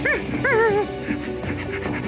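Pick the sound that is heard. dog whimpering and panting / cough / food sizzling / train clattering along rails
dog whimpering and panting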